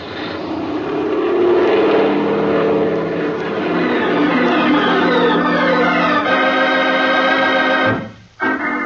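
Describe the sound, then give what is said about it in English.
A small airplane engine roars up to full power as the throttle is opened and the plane climbs back toward San Mateo airport, a loud, steady propeller drone with rising intensity that holds for several seconds before cutting off abruptly near the end. “Okay, then I'm going to give it the gun.”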